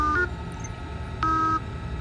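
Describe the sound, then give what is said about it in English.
Two short, steady electronic tones, the second a little longer, sound at the same mid pitch with a pause between them, in reply to a question, over a low background rumble. No one speaks. “Let's try one tone for yes, two tones for no.”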